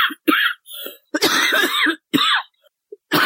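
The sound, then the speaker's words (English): A person coughs repeatedly in short bursts, then clears their throat with a rough, raspy sound, fairly loud, with brief pauses between the fits. “you need some pepper up potion or something.”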